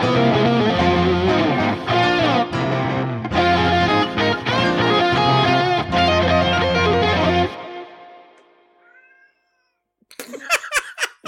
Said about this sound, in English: That was the best timed meow I've ever heard in my life. Brilliant. That's staying in. That's staying in.